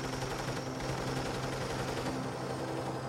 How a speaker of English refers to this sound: They opened fire at us.